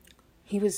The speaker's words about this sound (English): Sorry, taking a little sip of the tea.